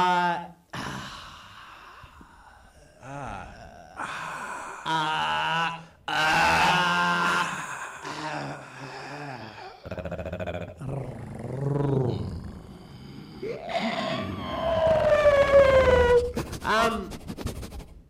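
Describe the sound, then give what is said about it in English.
A person vocally imitates a T-Rex roar, with drawn-out guttural bellows and rising strained cries that swell and fade over several seconds, loud, with breathy gasps between. “I was trying to do the final roar of the T-Rex in Jurassic Park.”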